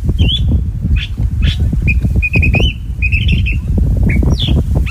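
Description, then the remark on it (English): A California thrasher, sitting on top of a big bush at the end of Point Loma near San Diego, by Cabrillo National Monument, sings a varied, jumbled run of whistled and harsh phrases, clear, over a constant low rumble of wind. “And that bird you were just listening to is a California thrasher.”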